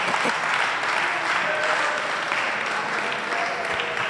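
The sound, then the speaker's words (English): An audience claps for Jesus steadily for about four seconds, a dense, even wash of many hands at a constant moderate loudness, ending in a sudden louder burst. “Clap for Jesus.”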